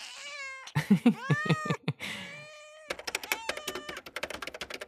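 A cat meows several times in a funny cat video from a video archive, drawn-out and wavering cries with a quick stuttering run in the middle, followed by a burst of rapid keyboard typing clicks.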